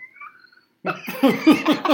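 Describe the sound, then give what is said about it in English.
Dogs play with a squeak toy, which squeaks in a quick run of five or six loud, wheezy squeals with falling pitch, following a faint thin squeak and a brief silence. No one speaks. “Okay, that's my dogs. What the heck was that? Squeak toy.”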